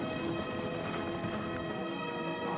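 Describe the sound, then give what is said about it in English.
Horses ridden in a race, some riders side saddle, gallop with a rapid, steady clip-clop of hooves, fairly loud and continuous throughout, over a dense, sustained background. “There they go. Don't fall off your horse, please.”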